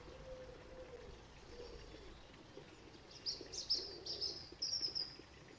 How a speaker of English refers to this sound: And the birds sing and the few noises of life going on around us happen on Good Friday.